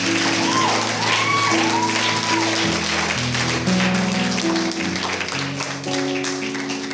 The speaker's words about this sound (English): If you believe it, say amen and give the Lord a huge hand clap of praise.